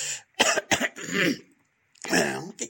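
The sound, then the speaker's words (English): Someone clears their throat in a few rough, raspy bursts, pauses briefly, then gives another harsh round of clearing. “but I just need to clear my throat a little bit.”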